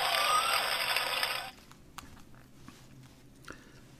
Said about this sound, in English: Let's see, what do I have that I can play for that? I guess just applause. Yeah. There we go, some applause.